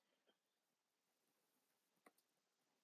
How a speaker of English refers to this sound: Hold on, just typing in how many deaths are caused by coronavirus.